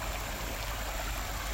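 creek water flowing

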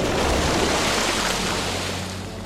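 ocean waves and surf

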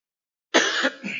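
coughing

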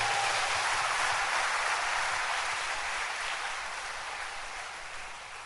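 audience clapping hands

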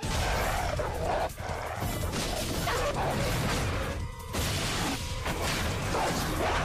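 dog barking

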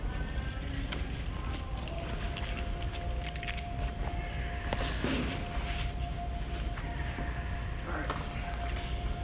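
keys jangling

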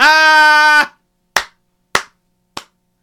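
hands clapping

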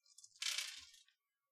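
five dice being rolled

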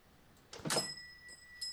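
elevator door sliding open

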